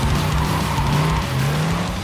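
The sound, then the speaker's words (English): A car engine revs hard and tires squeal as the vehicle peels away, a loud, steady roar with a whining pitch that shifts slightly over about two seconds. “And he put the key in ignition and started and peeled off.”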